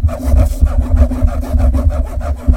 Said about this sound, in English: You pass through the large room, and you can hear from the opposite side, through the door you didn't go through, like the scratching of fingernails, like...